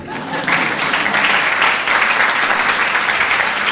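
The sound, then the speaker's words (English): A crowd breaks into steady, loud applause at the official opening of the Maurice Sendak Memorial Exhibition, 50 Years, 50 Works, and 50 Reasons, at the Enoch Pratfrey Library, many hands clapping in a dense, continuous patter that holds at full strength for several seconds. “You may clap.”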